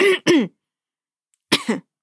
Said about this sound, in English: … coughs next to you.